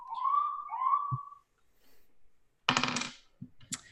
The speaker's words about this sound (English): Sorry, there's an alarm.